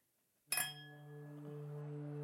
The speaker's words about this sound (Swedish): Skål. Klir, klir. Oj, nej. Dåligt klir. Kan du få till bättre klir?